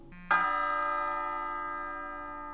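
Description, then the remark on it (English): A single church bell sound from a phone app, played on an old iPhone, rings out clearly with bright, layered overtones, then hums and fades slowly over a couple of seconds with no voices. “And the church bell.”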